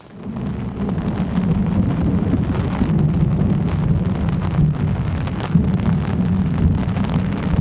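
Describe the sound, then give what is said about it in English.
A deep, sustained rumble of thunder rolls on through steady rain outdoors by a tree, loud and continuous for several seconds, with gusty wind buffeting in the background and no voices. “Ah, there it is. The great roar of thunder.”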